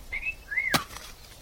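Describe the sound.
A woman gives a two-note wolf whistle while watching a man dig with his shirt off: a bright, fairly loud upward whistle followed by a second swooping one that ends in a sharp, sudden thud-like click. No one speaks.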